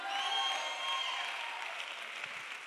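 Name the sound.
audience clapping hands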